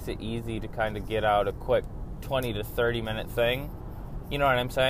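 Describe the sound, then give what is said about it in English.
A man talks steadily while driving to work over a low, continuous rumble of car interior noise, the muffled drone of driving staying faint but constant beneath his voice and in the short pauses. “Basically, because I'm working so much, I've just been forced to have to, like, record in my car on the way to work, which, I mean, I don't really have a problem with.”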